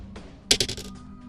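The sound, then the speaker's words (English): A four-sided die clatters across a hard surface in a quick burst of bright, sharp clicks that bounce rapidly and fade within half a second, with no voices. “We're going to roll randomly. So, let's do the d4.”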